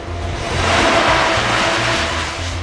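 A car rushes past on the road, its broad tire-and-engine roar swelling to a peak and easing off, with a low motor hum beneath. No one speaks.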